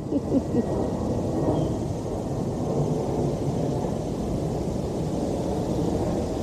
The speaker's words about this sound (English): Yet an airplane flying over right now.